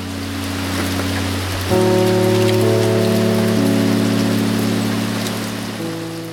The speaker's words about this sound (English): Christmas Eve, 1861. It started raining again. And it basically did not stop for 43 days.